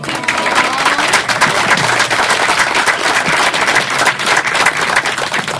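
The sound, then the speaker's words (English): Steady, dense applause from an audience, many hands clapping at once in a continuous loud wash of sharp claps, with some faint crowd murmur mixed underneath. “And could you guys not clap for the next guy”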